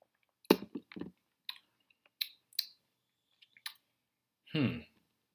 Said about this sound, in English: Jeez, hold on, folks. Hold on, let me take a sip of this beer, because I do have a beer I want to talk about, too